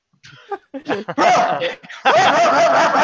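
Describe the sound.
A person mimics a dog with a few short, loud, throaty barks that lengthen into a sustained growling howl, with a hint of laughter mixed in.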